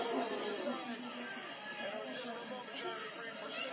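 A 1980s wrestling arena crowd cheers during a match with Sting, Tully and Arn, in a dense, continuous roar of many voices blending together, holding steady with slight swells and no clear break for the full few seconds.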